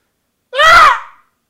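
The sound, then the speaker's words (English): A person lets out one loud, shrill squawk imitating a parrot, a harsh strained cry that rises and falls in pitch and lasts under a second, with no talking around it. “That was a pretty good impression of a parrot.”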